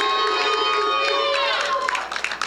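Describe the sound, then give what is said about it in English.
An audience cheers and calls out in praise to King Jesus over sustained keyboard chords, a loud, continuous wash of voices with a few sharper claps and shouts toward the end. “First of all, can we just give it up for King Jesus? First rebuke of the morning, you made more noise for me than you did King Jesus.”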